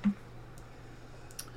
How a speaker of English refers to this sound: Are we I think, has everyone typed? You're just typing one name, right? Yeah, one name. Don't need to type the rest.